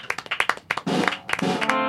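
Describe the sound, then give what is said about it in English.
A few people clap in scattered, uneven bursts, then the applause thickens into a louder, steady patter with a cheering voice rising over it near the end. “I think we should all applaud.”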